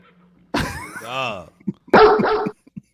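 Two loud dog barks from a sound effect, the first drawn out and tonal with a rising-falling pitch, the second shorter and harsher, followed by a few faint clicks.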